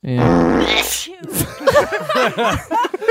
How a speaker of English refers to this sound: A fart sneeze. Everyone behind us didn't hear that, but he just played a fart then a sneeze into the radio and it was hilarious.